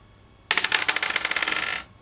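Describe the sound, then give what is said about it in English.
Dice rattle and clatter across a hard table for just over a second, a dense burst of bright clicking taps that starts sharply and trails off, fairly loud with no talking. “don't just roll 2 dice because Izzy's also rolling 2 dice”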